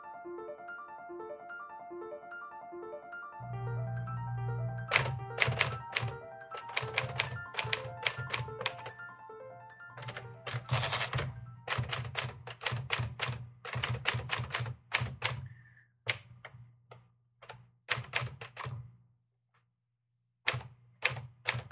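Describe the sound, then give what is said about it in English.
A mechanical typewriter clatters in quick bursts of sharp keystrokes with short pauses between, over a low steady hum, following a brief melodic musical opening. “So this week we're going to talk about some typewriter poets and about typewriter poetry.”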